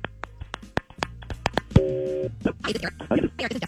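A phone number is dialed with a quick run of sharp button clicks, then a brief steady electronic tone. Muffled voices follow as the line seems to connect.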